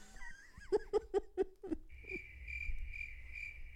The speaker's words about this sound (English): I have three new buttons. Crickets is a good one?